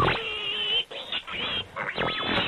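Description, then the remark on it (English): A pig oinking sound effect: a drawn-out squeal followed by a run of quick grunting oinks and squeals, loud, with no one talking over it. “All right, on that note, pigs out. I think there's a button for it.”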